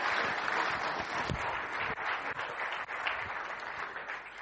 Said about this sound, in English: Right, we'll give you a big clap. You can go and sit back down.